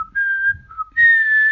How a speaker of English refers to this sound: They might be bilabial whistles, which is just two lips. That's like the kind that most people use, probably. Right, right. When they're whistling a song or something. Exactly, which I can kind of do.